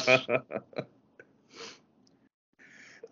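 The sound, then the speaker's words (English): A loud sneeze brought on by allergies bursts out, followed by a few quick sharp exhalations, another breathy sneeze-like burst, and a softer hiss of breath near the end. “Bless you, my good sir.”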